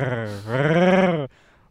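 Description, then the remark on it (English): A person imitates the growl of a dog protecting its food with one sustained, voiced rumble lasting over a second. It's fairly loud, rising slightly in pitch before cutting off abruptly. “But we, like, it would be protecting its food, right? So he would grab its ear, go like this.”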